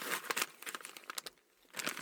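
Crinkling of a kangaroo jerky packet being opened: a burst of irregular, crackly plastic rustles with sharp bright snaps, pausing briefly before another loud crumpling flurry at the end. No one speaks.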